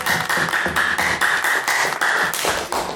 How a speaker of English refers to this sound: Easiest round of applause in the world.